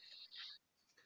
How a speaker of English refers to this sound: I'm gonna write these down. Somebody's got a pen and paper.